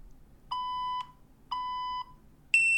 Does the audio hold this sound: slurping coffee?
no